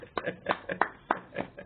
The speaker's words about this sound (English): all the clapping in this room that we're in. There's seven people who are excited for this